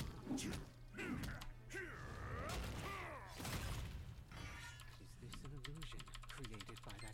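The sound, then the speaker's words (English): Rapid, continuous computer keyboard clicking, including the G key pressed quickly, clattering in a busy stream under indistinct voices and background game-like sounds. “Let me turn this up a little bit so you don't hear all of the incessant clicking. Because I clicked the G real quick to get out of here.”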